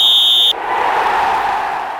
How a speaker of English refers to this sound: Let's play ball! Whistle!